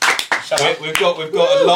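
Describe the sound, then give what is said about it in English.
A few scattered, sharp claps from a small audience of four people ring out over someone talking, irregular and sparse rather than a full round of applause, each one a quick bright smack. “Everyone clap.”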